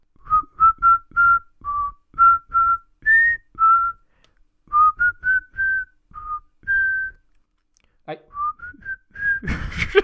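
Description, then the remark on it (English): Someone whistles a theme tune for another person to guess. The whistling is clear, in short repeated phrases with brief pauses between them, ending with a breathy burst of noise near the end. “Are you ready for a bit of whistling?”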